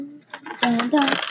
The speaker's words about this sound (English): 20! 20 is a hit. Roll that. Roll your yellow dice, yeah. 3. Roll it again.